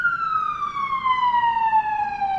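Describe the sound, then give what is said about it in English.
An emergency vehicle siren wails loudly and steadily outside, its tone gliding slowly downward as it passes, with faint traffic rumble underneath and no voices. “There's so many sirens today.”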